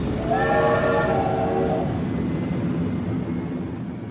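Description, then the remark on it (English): A train horn sounds a steady chord for over a second above a loud, continuous rumble of a departing train, which carries on alone after the horn stops. “Once the door was closed, the space train blew its horn and blasted off the disco planet towards space.”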